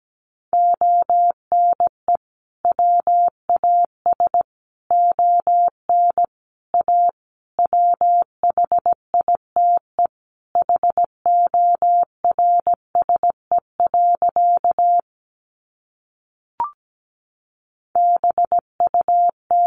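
Morse code sent at 17 words per minute, spelling practice sentences built from the 300 most common words: a single steady mid-pitched tone keyed in quick short and long beeps, grouped into words, with one longer pause near the end and no voices.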